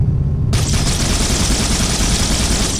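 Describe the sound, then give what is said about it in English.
The needler weapon from the video game Halo fires in a loud, rapid, continuous stream, starting abruptly after a brief low rumble and hissing on without pause. No one speaks. “Bury all the needles from a needler into somebody.”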